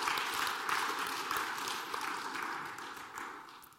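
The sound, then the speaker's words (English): A church audience applauds for Jesus during a sermon before Christmas, in a dense, steady wash of many hands clapping, holding fairly loud throughout and easing off slightly toward the end, with no voices standing out. “Can we clap that up for Jesus?”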